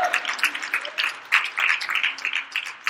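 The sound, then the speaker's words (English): An audience at a church service applauds in praise of Jesus, dense overlapping hand claps forming a continuous bright patter for the whole stretch, with scattered faint voices and cheers mixed into the clapping. “Come on, give Jesus a good praise.”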